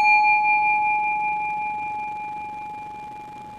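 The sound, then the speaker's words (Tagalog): A single gong rings out clearly on its own, its steady metallic tone hanging in the air and slowly fading over several seconds with no voices. “So maririnig mo tong gong, di ba?”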